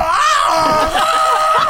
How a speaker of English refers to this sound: My yell takes on a slightly more panicked note.